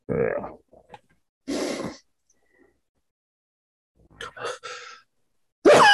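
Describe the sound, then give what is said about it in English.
Several breathy, gasping inhales build up in short bursts with pauses between them, ending in a sudden loud, forceful sneeze burst. “I can feel a sneeze coming on, but it's not quite here yet.”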